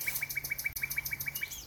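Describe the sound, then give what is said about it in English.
A male nightingale, one of two males singing near each other in scrub habitat with blackthorn, wild rose and small trees, sings a rapid, even series of a dozen or so repeated bright notes, clear, ending in a higher rising whistle, with no voices. “So we've been very fortunate to come across these two males that are singing very close to each other in some brilliant habitat, but new habitat we haven't seen them occupying before, having territories.”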